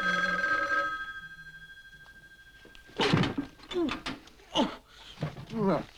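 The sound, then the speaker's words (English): An old telephone bell rings briefly in an apartment hallway at the start, its tone lingering and fading before voices begin talking over faint background noise. “So Stanley heads towards his apartment, and the phone rings.”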